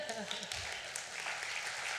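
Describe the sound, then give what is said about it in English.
A group claps steadily for a couple of seconds, a dense, even patter of many hands, with a voice briefly murmuring underneath at the start. “I think we just need to stop there and clap.”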